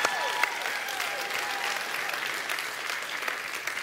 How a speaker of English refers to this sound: I don't know if anybody from the worship team is still here, but if they aren't, please give them a round of applause so no matter where they are, they can hear it.